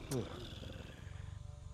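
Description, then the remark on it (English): A very large, heavy female cat named Grudge growls, opening with a short, loud, wavering yowl that quickly gives way to a steady, low, pulsing rumble lasting over a second. “You have a very large cat.”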